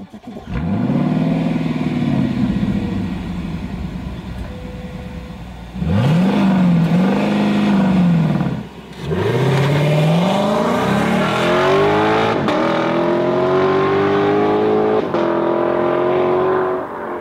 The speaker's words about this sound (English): You start the car immediately, that V8 growls, you know, it goes up to about 1,500 revs, and then it settles down to 800, and it's still, you know, it's a rumble.